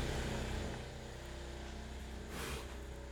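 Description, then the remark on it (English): A lawn mower engine running beside a house wall drones steadily with a low, buzzing hum, holding a constant loud level with a brief surge of noise toward the end. No one speaks. “It feels like he's using the mower on your wall.”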